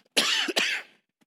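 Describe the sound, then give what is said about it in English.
Two harsh coughs in quick succession, the first longer and raspier, the second following right after, with no talking around them. “Sorry, I'm about to cough.”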